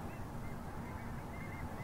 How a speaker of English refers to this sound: But I can hear those long-tailed ducks.